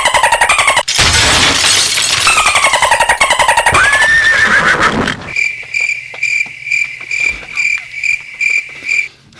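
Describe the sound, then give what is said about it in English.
Crickets chirp in a steady, rhythmic series of bright pulses, clear and fairly loud, following a few seconds of harsh, crashing noise at the start. “Wait, what came after crickets?”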